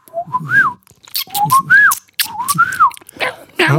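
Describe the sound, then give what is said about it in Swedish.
Someone whistles three short, warbling rising-and-falling phrases, imitating the song of a small blue finch, with breathy puffs and soft clicks between them and no talking. “En liten blå fink.”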